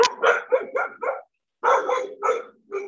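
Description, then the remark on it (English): A dog barks in two quick bursts of sharp, repeated barks separated by a short pause, fairly loud, with no talking over it. “Your dog's really mad about the fact that I don't like quads.”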